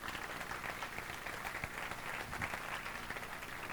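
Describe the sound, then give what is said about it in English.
An audience breaks into steady applause for the performer who played Herod in the play, a dense wash of many hands clapping at an even, moderate loudness throughout with no voices standing out. “Round of applause for Herod.”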